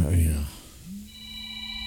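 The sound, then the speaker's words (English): A phone's electronic ringtone starts partway through, holding a steady buzzy tone of moderate loudness after a brief muffled voice-like rumble at the start. “I wonder whose phone that is going off.”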